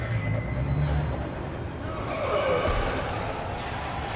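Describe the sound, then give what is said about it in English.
A big school bus rumbles as its air brakes squeal and hiss, a steady loud wash of engine noise and high whining tones lasting a few seconds, with no one speaking. “The guy fell into the path of a school bus.”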